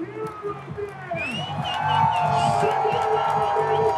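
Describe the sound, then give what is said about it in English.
A loud stadium crowd at a home run derby roars and cheers for the Todd Father batting for the Reds, the noise swelling after the first second into a sustained wall of whoops and yells, with a few shrill voices cutting through the din. “This crowd is bonkers.”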